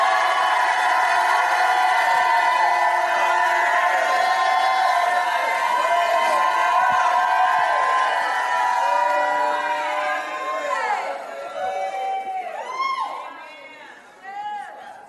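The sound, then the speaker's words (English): A large audience erupts in loud, sustained shouting and cheering, a dense roar of many voices with high whoops rising over it before the noise begins to thin out toward the end. “If you believe it, jump up like you never and shout like you've never shouted in your life.”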